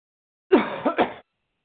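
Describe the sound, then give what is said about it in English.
A person coughs in a short, rough burst of about three quick hacks, fairly loud, with silence before and after and no talking. “Doesn't he sound like he's just getting coughing.”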